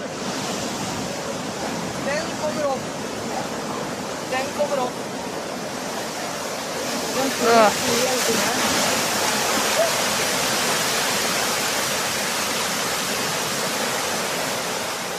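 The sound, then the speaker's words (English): A continuous, heavy roar of rushing seawater as tsunami waves flood the shore at Koh Lanta while people watch, filling the whole recording, with faint voices briefly audible beneath it. “But so here's another video of waves flooding the shore as people watch in Koh Lanta.”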